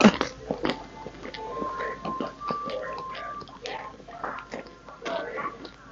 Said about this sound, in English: Now you can probably just hear my chewing, but oh well.